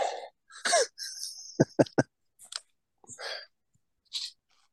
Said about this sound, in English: Good Lord. I have been out. That's why I'm sniffing.